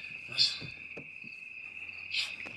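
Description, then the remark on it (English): Crickets chirp in a steady, high-pitched drone that never lets up, with a couple of brief louder bursts rising over it against an otherwise quiet, faintly rumbling background. “There's no music, just crickets.”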